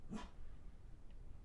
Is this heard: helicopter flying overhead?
no